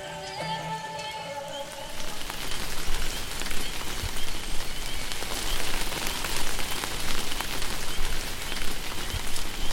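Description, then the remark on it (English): A steady downpour of rain patters on hard surfaces, a dense hiss with scattered drops, starting after a brief tonal musical lead-in and holding constant to the end. “Let's get inside before the rain comes and ruins that pretty dress of yours.”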